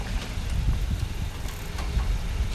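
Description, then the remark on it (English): A car passes by and turns near a cyclist, with a steady low rumble of engine and tyre noise, mixed with wind buffeting around an outdoor microphone, continuous and fairly loud with no speech. “I said got a car situation here.”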